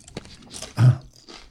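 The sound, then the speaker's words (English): Crunchy munching right up against the microphone: a few irregular chewing crackles with one louder, thicker crunch in the middle, no voices. “Wanna munch in stereo.”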